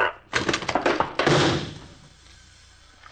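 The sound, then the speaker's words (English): A quick burst of knocking and clattering as a door opens, then a heavier thump of a thrown shell landing, fading into quiet room tone. No one speaks. “Once you get the door, I'll toss the shell.”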